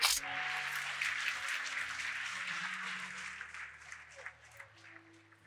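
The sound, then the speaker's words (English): A crowd claps together for the Lord in a dense, steady burst of applause lasting several seconds, with sustained low organ-like tones humming underneath and the clapping thinning slightly toward the end. “Put your hands together and give the Lord a hand clap.”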